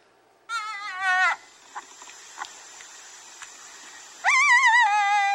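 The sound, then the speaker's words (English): A jackal howls in two loud, wavering, high-pitched wails with a quivering tremolo, separated by about three seconds of faint rustling and scattered small noises. No one speaks. “Now I found some sound of a howling jackal.”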